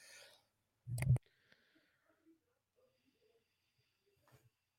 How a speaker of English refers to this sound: Sorry, I had to cough.